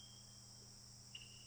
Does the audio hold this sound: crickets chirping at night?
yes